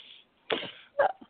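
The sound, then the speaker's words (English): Two short, harsh coughs, the first a broad raspy burst and the second a quicker, throatier hack, with a faint catch of breath trailing after. “Sorry, I was coughing and sneezing again.”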